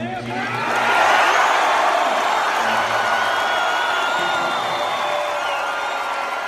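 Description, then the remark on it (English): A large arena crowd in the Garden roars and cheers continuously on a Thursday night after a player tells the crowd he plans on re-signing with the Boston Celtics, a dense wash of voices and whoops that swells in the first second and stays loud throughout, with no single speaker standing out. “that's what it sounded like in the Garden on Thursday night when Kyrie Irving told the crowd”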